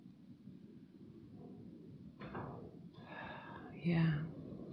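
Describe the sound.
Low wind rumbles and gusts outside throughout, growing stronger, and near the end a closed door gives a short, strained creak in the wind. A voice speaks briefly and quietly.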